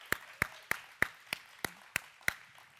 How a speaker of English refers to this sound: Haven't you enjoyed the music today? Wow. I mean, it's, give them a clap, will you?